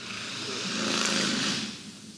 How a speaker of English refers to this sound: Cue the motorcycle.